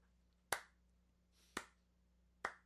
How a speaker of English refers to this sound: I'm clapping for you, Marvel. You trolled us, man.